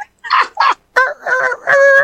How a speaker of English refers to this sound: I'm back in the timber. I throw out a couple of yelps, and I shit you not, a rooster starts crowing back at me.